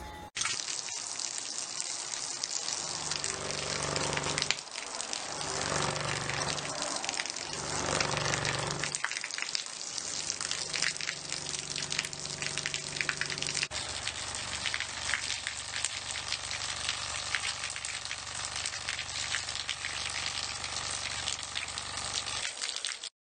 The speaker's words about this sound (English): Next, I want to look at a clip of what applying 25 hertz does to water.